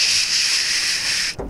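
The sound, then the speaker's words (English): A voice imitates a spray paint can with a steady, loud, airy hiss lasting about a second and a half before cutting off abruptly, with a faint low thump at the end. “Let's just spray paint it.”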